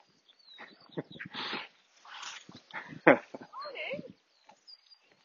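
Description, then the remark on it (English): A female dog whimpers outdoors in a few short, high, wavering whines, with scuffing and rustling noises between them. “Come on, dog.”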